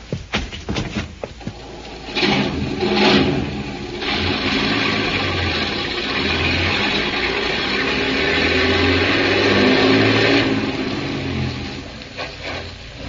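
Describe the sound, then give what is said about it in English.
A few clanks and clicks, then the heavy engines of two trucks rumble to life and roar steadily as they are driven down a bank into the water, the noise loud before easing near the end. “Grab those trucks and drive them right into the water.”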